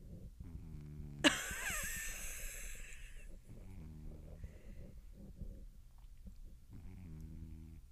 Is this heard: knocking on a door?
no